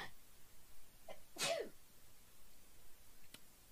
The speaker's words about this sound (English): I think I have to sneeze. Hold on.